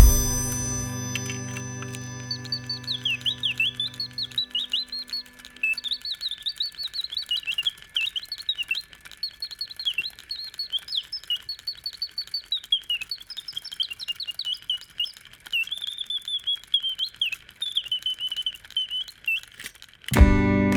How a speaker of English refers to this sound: it was a mechanical orange tree that, instead of having the butterflies, it actually had a singing bird that popped out of the top